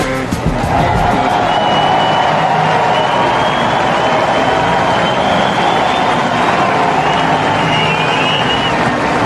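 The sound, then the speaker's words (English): A big baseball stadium crowd on its feet roars and applauds in a steady, loud standing ovation for a batter waving to the crowd, holding unbroken for the whole stretch, with a faint murmur of voices blended into the din. “Fans are on their feet for Juan Soto. He's waving to the crowd”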